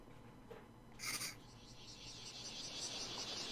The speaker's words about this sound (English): Oh, cicadas.